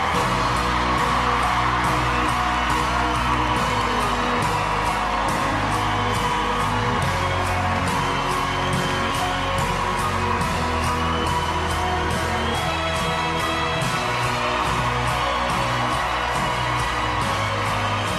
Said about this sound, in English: What was it like when you were up there, the whole place got on their feet, the judges were up clapping, you got a standing ovation from everybody?